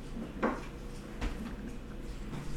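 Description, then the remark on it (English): An ice maker pops and clunks, two short hard knocks about a second apart and a fainter one later, over a low steady mechanical hum, with no talking. “That's something else that's popping. That's the ice maker.”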